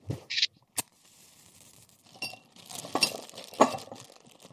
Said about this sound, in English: We're going to light a match. We're going to blow out the match and immediately throw it into the jar. And then we're going to replace the lid with the bag of ice. This is with the warm water in the jar.